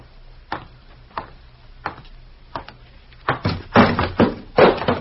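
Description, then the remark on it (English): An ashtray is knocked over by a woman: a few separate sharp knocks, then a louder, rapid burst of clattering and rattling as it tumbles. No voices. “She knocks over ashtrays, too, eh?”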